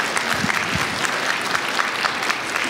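A crowd applauds steadily, dense overlapping claps forming a loud, even wash of sound that holds throughout without pause.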